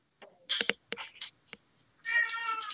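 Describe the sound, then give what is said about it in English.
Several cats meow in quick succession, short sharp cries followed by a longer drawn-out yowl near the end, fairly loud with no talking. “Yep, all cats making noise.”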